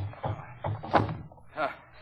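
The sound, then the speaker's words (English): A heavy chair is shifted and set down while furniture is being rearranged, with several dull wooden thumps and a short scrape, while muffled voices murmur in the background. “Well, don't move the chair now”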